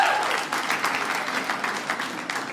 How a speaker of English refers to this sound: So round of applause. Who's the clean one? Clap if you're the clean one tonight.